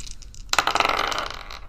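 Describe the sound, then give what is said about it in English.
Dice rolled for a scent-based perception check tumble and clatter across a hard tabletop in a quick burst of rattling clicks, about a second long, then settle. Faint muffled sounds come before the roll. “So roll me a scent-based perception check, please.”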